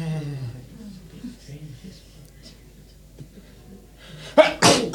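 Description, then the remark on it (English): A man's voice talks steadily, then near the end a sudden loud sneeze bursts out in two sharp, noisy blasts. “Oh, bless me. Bless you.”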